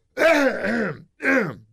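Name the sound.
throat clearing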